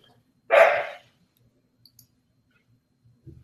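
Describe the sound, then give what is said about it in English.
A dog gives one loud, sharp bark lasting about half a second as a pizza delivery arrives, followed by near silence with only a couple of faint clicks and a low thump. “Hold on, man, 1 second. My dog, I got a pizza coming.”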